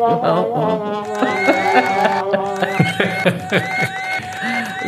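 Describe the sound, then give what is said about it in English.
A large crowd of some 10,000 people cheers loudly and continuously, many overlapping voices whooping and shouting together with rising calls, sustained for the full few seconds. “This is why 10,000 people cheer going on our podcast.”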